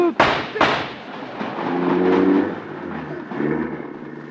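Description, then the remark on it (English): An old car engine cranks to life with two sharp, loud backfire bangs, then settles into a rough, sputtering rumble that surges and fades unevenly. “Man, what a car.”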